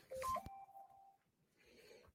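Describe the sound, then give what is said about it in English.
A few quick electronic beeps at different pitches, like phone keypad tones, end in a sharp click. A steadier mid-pitched tone then lingers briefly before fading into soft hiss. “Is that me beeping or is that you beeping?”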